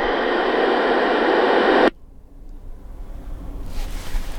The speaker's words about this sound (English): The coaxial cable is feeding into my CB, and I am ready to go. All I need to do is turn it on and see if there is anybody out there. I will adjust the squelch to get rid of the background interference.